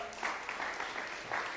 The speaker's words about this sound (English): let's clap for her.